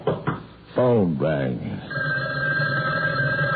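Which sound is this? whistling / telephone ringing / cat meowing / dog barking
telephone ringing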